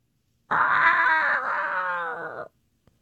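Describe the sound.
A person imitates a dinosaur roar as a hint for the film Jurassic Park, a loud, raspy, sustained growl lasting about two seconds. It holds a steady pitch, then cuts off abruptly into silence.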